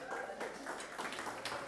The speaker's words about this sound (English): You're actually clapping yourselves. No, go for it, go for it. Yeah, we need to celebrate. We need to celebrate.